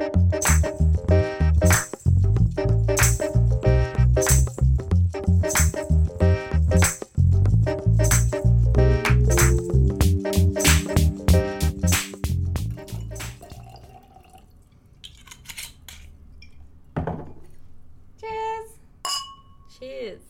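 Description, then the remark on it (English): Wine glugs and trickles into a glass, with clinks of glass against glass, first over a dense, steady background and then more sparsely and quietly toward the end. “Okay, do you want another glass of wine?”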